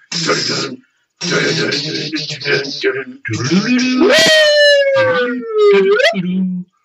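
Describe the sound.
A loud, buzzy guitar note bent with a whammy bar leaps upward, sags slowly for about two seconds, then swoops back up, following a few seconds of talking.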